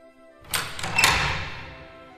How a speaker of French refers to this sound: Vous pouvez maintenant entrer à l'intérieur et vous diriger vers la grande salle. La porte s'ouvre devant vous.